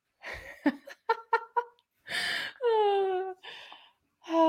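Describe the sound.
A voice imitates the Spaceballs gag of breathing canned air out of cans: a few quick breathy bursts, then a longer, wheezy drawn-in gasp and a final breath, fairly loud, with no words spoken.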